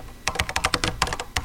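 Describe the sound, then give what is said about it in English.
Rapid clicking of fingers typing a screenplay on a computer keyboard in Portland, a dense run of crisp keystrokes with short pauses, no voices. “I typed, and typed, and typed.”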